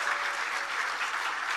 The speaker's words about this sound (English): Dale un aplauso al Señor. Why don't you give him a round of applause?